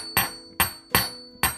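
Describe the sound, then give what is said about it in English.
Four sharp, bright clinks of four ceramic plates, taken out of a cabinet, being stacked one on top of another, irregularly spaced, each with a short ringing tail. No voices are heard. “And he put them on top of each other. And they were kind of clinking.”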